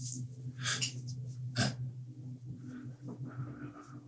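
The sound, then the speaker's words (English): A voice imitates ragged, labored breathing, with harsh raspy inhales and exhales, a couple of sharp gasps, and a low droning hum underneath throughout. “Got really ragged breathing.”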